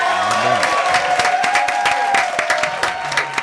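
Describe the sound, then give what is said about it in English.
A crowd claps and cheers loudly for a few seconds, dense overlapping hand claps with some whooping voices mixed in, sustained throughout. “clap it at one time”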